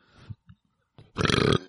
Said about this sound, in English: Or rather, I would not. Like you to stop fucking burping into the mic. Noted. Thank you. It's fucking annoying.